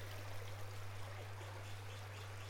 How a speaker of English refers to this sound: The wet, rainy, sloshing through the earth vibe of this recording seemed perfect to match both the rainy day in Southern California that this podcast is getting recorded